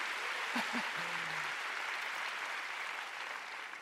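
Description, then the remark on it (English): An audience claps together for their pastor, a canon, in a dense, steady wash of applause that holds for several seconds, with a brief tonal hum and a faint voice early on before the clapping gently thins. “Let's give Canon a big clap.”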